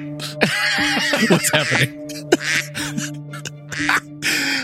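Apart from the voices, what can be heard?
duck quacking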